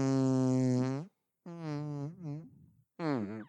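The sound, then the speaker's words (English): A voice imitates fart sounds: a long buzzing blat, then a wobbling sputter that trails into a low rattle, and one more short blast after a pause. “Nobody does fart sounds the way you do them.”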